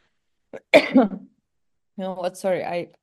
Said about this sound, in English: It's going around the whole world. Everybody's got a nasty cough.